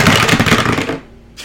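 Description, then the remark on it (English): A quick clatter of two six-sided dice rolled across a table for a sneak attack damage roll in a tabletop game, a rapid burst of hard clicks and rattles that stops abruptly after about a second, followed by near silence. “Alright, so I'm rolling, for my sneak attack, I'm rolling 2d6.”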